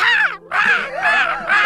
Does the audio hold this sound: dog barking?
no